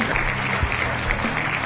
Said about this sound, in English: I got some applause in there. Good. That's good.